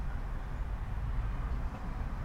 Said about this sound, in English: I mean, this is a sound installation here, isn't it? We have trains coming behind us.